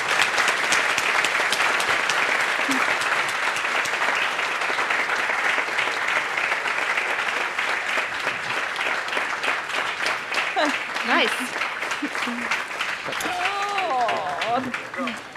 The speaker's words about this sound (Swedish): Kan vi inte ge en applåd först innan vi...